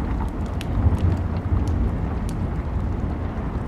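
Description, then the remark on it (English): A deep, continuous rumble of rolling thunder swells and recedes low in the background, with steady rain pattering on the roof and a few sharp drips on top. No voices. “And listen to the rumble as if it's a rolling ball that's rotating around you 360 degrees.”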